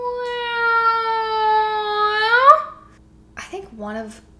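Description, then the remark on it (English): A loud, steady siren wail holds one high pitch for a couple of seconds, then bends upward and fades out, followed by a few brief bursts of someone talking. “We got sirens.”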